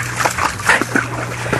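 A dog splashes through shallow stream water by a bridge, with several quick, uneven sloshing bursts over a steady low hum. No one speaks.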